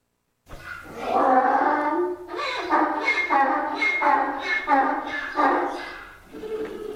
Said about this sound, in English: What do you reckon? What animal? That's a donkey.